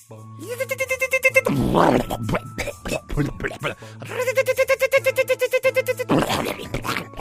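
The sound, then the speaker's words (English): A voice imitates a really old beater car struggling to start: rapid, rhythmic sputtering cranks that stall into choppy bursts, then another long cranking run that breaks off again, fairly loud. “Now a really old beater car struggling to start.”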